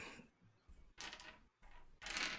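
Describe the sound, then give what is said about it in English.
Two bursts of hard, rattling clatter as seven eight-sided dice (7d8) are rolled, tumbling and knocking together on a table. The sounds are sharp, with short quiet gaps between them. “Wow, that's a lot of dice.”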